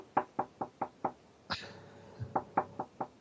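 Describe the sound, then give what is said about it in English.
Crisp knocking on a door: five quick evenly spaced raps, a brief pause with a single heavier thud, then four more quick knocks, with no voices. “Someone at the door.”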